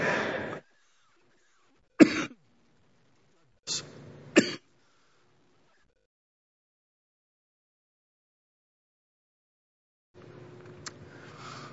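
A man with a cough and sore ribs coughs and clears his throat several times in short, separate bursts with pauses between, fairly loud, followed by soft murmuring talk at the end.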